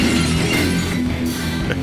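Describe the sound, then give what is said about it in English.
A loud crash of breaking glass, with dense shards scattering and ringing briefly before the clatter settles, played on its own as a short punchy stinger introducing the Glass Jaw segment of a radio show. “That's the best stinger in radio.”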